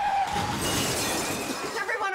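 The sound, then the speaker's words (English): A loud crash of breaking glass as a hot dog shaped car smashes through a window, a dense burst of shattering debris sustained for a couple of seconds with a faint engine rumble underneath. “Someone drove a hot dog shaped car through the window.”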